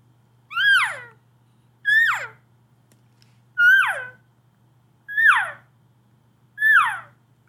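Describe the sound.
Five elk mew calls made by a caller demonstrating elk calling, each a short, high, nasal whine that slides downward in pitch, repeated at a steady pace of about one every one and a half seconds over a faint low hum.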